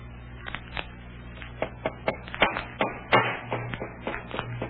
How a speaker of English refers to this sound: Well, they're hammering that crate tight shut.